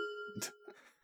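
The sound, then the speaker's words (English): A voice mimics an old doorbell with a steady, bright ringing tone that holds for about half a second, broken by a breathy burst and followed by a soft, fading murmur. “An old-ass doorbell.”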